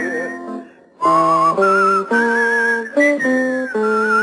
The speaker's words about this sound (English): Whistle a tune that'll carry me to Tombstone Territory.